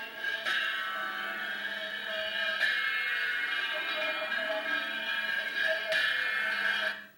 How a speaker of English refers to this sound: And the gong, a metal vessel that he hits with a hammer.